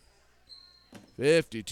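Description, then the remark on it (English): A basketball bounces a couple of times on a hard gym floor as a player dribbles with the left hand at the elbow during a game between Eisenhower and PH, followed by loud, brief shouts or sneaker squeaks in a reverberant gym. “Dribbling with the left of the elbow.”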